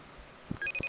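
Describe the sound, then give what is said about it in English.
An outgoing FaceTime video call ringing tone begins partway through, bright electronic chimes in a repeating melodic pattern, fairly quiet and clear, with a couple of soft thumps before it and no talking. “It's ringing.”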